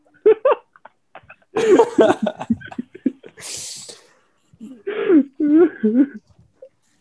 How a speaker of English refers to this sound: Did you guys see me try to not sneeze? Yes. It was painful, bro. That was so bad.